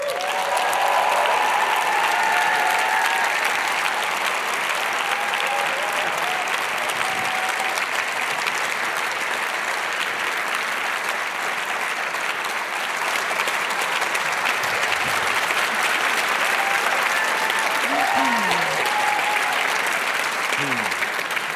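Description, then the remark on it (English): Sustained audience applause at a live poetry show, welcoming artist Chris Riddell and actors Samuel West, Adjoa Ando, Simon Russell Beale, Helen McCrory, Stephen Mangan and Joanna Lumley: a dense steady wash of many hands clapping at an even loudness, with a few faint whoops and voices rising briefly above it. “Can you now hold back your applause until the end of the show?”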